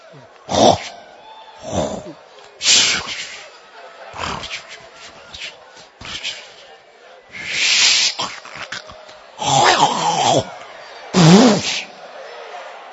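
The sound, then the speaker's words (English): A man loudly imitates snoring with his voice, portraying Jesus asleep in a boat on the Sea of Galilee: a series of harsh, rasping snorts and wheezy exhales, about eight bursts in an uneven rhythm, with short pauses between. “Some of you, when you sleep, you are like a truck.”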